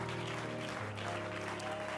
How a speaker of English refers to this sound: And would you clap your hands unto the Lord and praise him in advance? Come on, praise him. Don't look at me and clap your hands. Praise him.